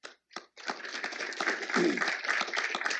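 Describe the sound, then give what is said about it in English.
In-person audience applause at the Heritage Foundation's 50th anniversary event: a couple of isolated claps, then a dense, steady burst of many hands clapping together for a few seconds, full, with no talking. “So for all of you in this in-person audience, those of you online, those of you who have been Heritage interns, alumni, a round of applause to you for being part of this great institution.”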